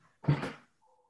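A pet dog gives one sharp, loud bark during an online video call, with a sudden onset that fades within half a second. A faint steady tone hums briefly afterward, and no one speaks.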